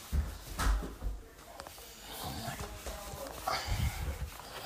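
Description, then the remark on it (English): A dog barks excitedly at a pizza delivery in a few rough, muffled bursts, with scattered thumps and room noise between the barks. “Dog's barking, going crazy.”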